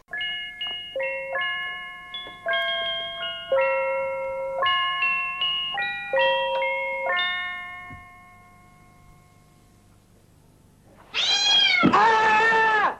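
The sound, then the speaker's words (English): Bright chiming tones ring out in a stepping pattern, then after a quiet pause a cat lets out two loud, screeching yowls that rise and fall sharply in pitch as it is dropped onto a woman's head in a scary scene. “So she gets a cat dropped on her head at one point, and I defy you not to yell out in shock when that happens, even if I've spoiled it just now.”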